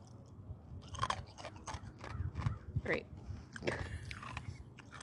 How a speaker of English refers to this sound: You chew your ice. I'm hydrating. If you're going to drink booze, you got to hydrate.